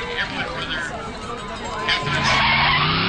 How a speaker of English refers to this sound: Do you hit the gas when you take off and lay a little rubber? Or you hit the brakes at the last minute and leave a little rubber?